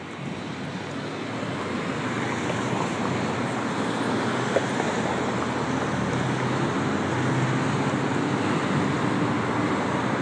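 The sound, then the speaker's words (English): A steady, unbroken roar of road traffic, cars streaming past and blending into a continuous surf-like hiss, with no single vehicle standing out and no voices. “I like the sound of cars moving.”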